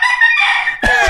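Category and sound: bird, rooster crowing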